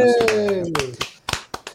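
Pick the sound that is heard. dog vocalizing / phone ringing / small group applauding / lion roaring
small group applauding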